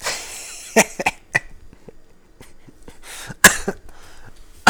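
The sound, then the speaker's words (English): Two fits of harsh coughing, each a quick run of three or so rasping coughs separated by a brief quiet pause, with no talking. “Oh, fucking coughing.”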